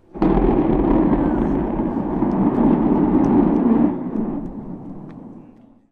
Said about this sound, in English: Speaking of SpaceX, Tesla owner Silicon Valley tweeted out a video of Starship's static fire test and said, can't wait for us to get to Mars. Orbital launch soon.